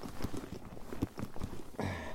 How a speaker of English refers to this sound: Just going across the cattle grid.